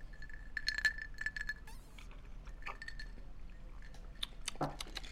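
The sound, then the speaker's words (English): Several bright glass clinks ring out close together in a toast, short chiming taps with a little ringing tone, followed by faint liquid and handling sounds against a quiet background. “To your health, gentlemen. To your health, indeed. Cheers.”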